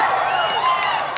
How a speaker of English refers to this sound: Insert applause here.